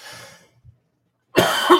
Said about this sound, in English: God, I keep coughing too. I hate bronchitis.